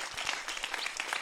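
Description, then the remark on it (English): An audience claps their hands together in a short burst of scattered, overlapping applause, steady, with no voices standing out over it. “Come on, clap your hands if you're tracking with me.”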